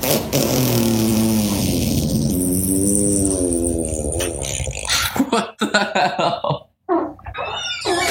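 A long, loud fart sound effect: a buzzy, low rasp that wobbles in pitch for about five seconds, then breaks into short, choppy, noisy sputters with brief gaps.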